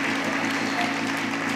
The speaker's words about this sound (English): Come on, church. You can keep clapping longer than that. Heaven is celebrating today.